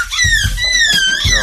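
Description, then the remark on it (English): Human voices imitate seagull calls: a steady run of high, wavering squeals that rise and dip in pitch, loud and continuous, with a few low thumping bursts underneath. “Man, they've been working on those calls.”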